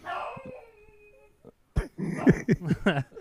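A dog lets out a long, high whine, falls quiet briefly, then bursts into a quick run of agitated yips and barks as somebody comes up to the door.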